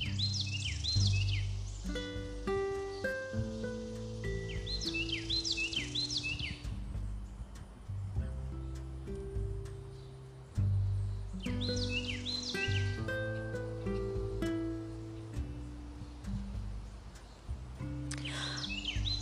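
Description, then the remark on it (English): Birds chirp outdoors in repeated quick bursts every few seconds, bright, over a steady low background rumble with no one talking. “But yes, so listen to nature really quick, you guys.”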